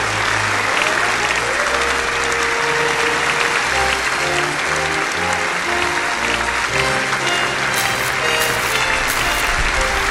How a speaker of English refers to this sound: Clap your hands, everyone.